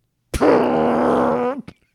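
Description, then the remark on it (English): A single loud, drawn-out throat burp with a low buzzing tone that holds steady for over a second before cutting off with a short click. “Man, sounded less and less like a car revving and more like a chili cook-off. Throat burp.”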